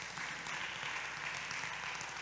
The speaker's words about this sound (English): And why don't y'all give a hand clap to this wonderful praise team? I mean, hey, that was something else.